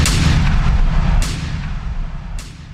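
Three loud gunshots fire at a steady pace about a second apart, each a sharp crack followed by a deep, rumbling boom that lingers and fades. No voices are heard.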